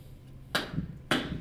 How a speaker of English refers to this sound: Quiet room. You need to find a room where the sound doesn't bounce off of both of the walls. One of the ways you can really test the acoustics of a room is by clapping your hands and then listening for an echo.